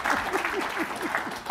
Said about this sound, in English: Can we get some applause? Can we get some applause?